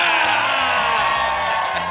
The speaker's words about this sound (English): See, it's the easiest job around. Big round of applause.